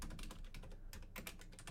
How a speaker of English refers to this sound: Sorry for the typing.